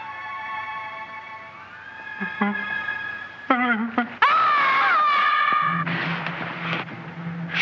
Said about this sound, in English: but she shrieks when she sees the monster, and she is not about him at all.